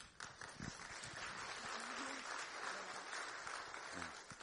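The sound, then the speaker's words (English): A church audience applauds its pastor: sustained applause, a dense wash of many hands clapping at steady loudness for several seconds, with a few faint voices briefly rising beneath it. “And we should applaud him.”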